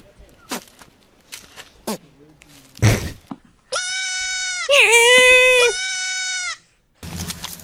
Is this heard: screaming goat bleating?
yes